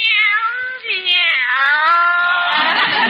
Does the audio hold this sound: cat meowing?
yes